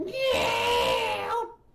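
A single eerie, drawn-out shriek that sounds like a baby crying, loud, holding for about a second and a half before cutting off into quiet.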